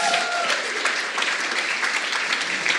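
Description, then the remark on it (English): A crowd gives Al a round of applause, clapping steadily in a dense, even wash that holds at a strong level for about three seconds with no voices standing out. “Should we give Al a huge round of applause?”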